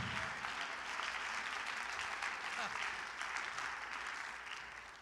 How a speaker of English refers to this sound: Somebody clap your hands and thank the Lord.